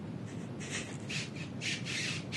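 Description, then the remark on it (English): A drink container squeaks in a series of short, high-pitched bursts, about six or seven in irregular succession, each a shrill rubbing squeal over a low background hum with no talking. “Yeah, quit squeaking your drink.”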